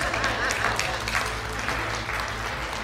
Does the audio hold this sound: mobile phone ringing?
no